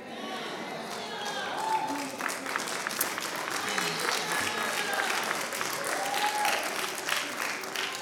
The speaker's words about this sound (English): Let me say it another way, because y'all look like y'all was clapping like y'all was at the petting zoo.